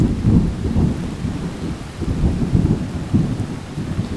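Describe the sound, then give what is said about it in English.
Deep thunder rolls and rumbles continuously beneath a steady hiss of falling rain, fairly loud, with no voices present. “One of my favorite things since I was a kid was sitting inside during a big summer thunderstorm watching scary old movies on TV.”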